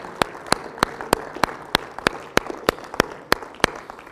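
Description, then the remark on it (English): A crowd at a worship service claps hands together in praise to God in a steady, even rhythm, about three claps per second, with sharp unison claps standing out over a wash of scattered clapping and room noise. “Would you clap your hands in praise to God? Give him an ovation.”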